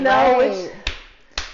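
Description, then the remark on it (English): A voice speaks briefly, then two sharp, crisp hand claps ring out about half a second apart, each a quick percussive smack with nothing between them, clapping in tribute to a singer. “I just have to clap it up for that.”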